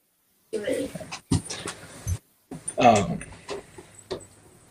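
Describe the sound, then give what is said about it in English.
Puppies pant and whimper in short, broken bursts, with a few higher whiny yelps rising over the breathy huffing before it trails off. “Sorry, puppies distracted me.”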